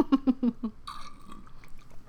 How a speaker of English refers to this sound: Sorry for the slurp. I think it's because, did I drink it all already? No, but I like a lot of ice. And then that causes the slurps.